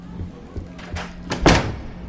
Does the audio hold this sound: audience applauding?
no